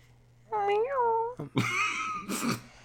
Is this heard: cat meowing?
yes